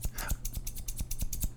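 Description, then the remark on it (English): Gold-plated right-handed scissors with an orange handle snip open and shut in a quick, steady rhythm, about a dozen crisp metallic clicks with nothing being cut and no voices. “Actually cutting the paper, I'm just making the scissor noise.”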